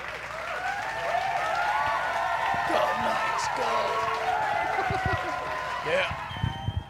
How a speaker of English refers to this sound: Super delayed applause. I know, I thought that was coming from in there.